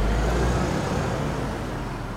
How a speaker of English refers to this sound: Sarah gets into the car and quickly drives away.